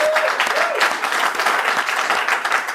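Steady audience applause given in thanks for bringing a guest in, a dense wash of many hands clapping at a constant loud level for a few seconds, with a faint whistle-like tone briefly rising above it near the start.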